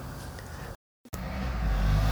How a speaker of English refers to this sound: Ah, sorry. Motorcycle. Okay, good, done.